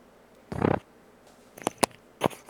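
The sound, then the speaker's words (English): A kitten chews on the microphone of a headset: a short scratchy rustling burst, then a few sharp, crunchy clicks and bites spaced irregularly, with no voices. “That was a kitten chewing on the mic for my headset.”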